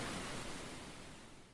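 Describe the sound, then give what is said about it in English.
A soft, continuous hiss of ocean surf washing steadily, with no distinct individual wave breaks, quiet and slightly fading toward the end. No voices are present. “You're listening to Ocean Waves.”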